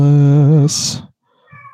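An angry cat lets out a drawn-out, wavering yowl that breaks into a sharp, loud hiss, then falls silent before a brief, fainter tonal sound at the end.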